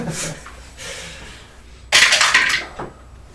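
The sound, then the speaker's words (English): Dice rattle down through a dice tower: a light clatter, a brief second rattle, then a louder burst of hard, bright clicks and tumbling that quickly dies away. No one speaks. “He's intended to try and get in the dice tower two times.”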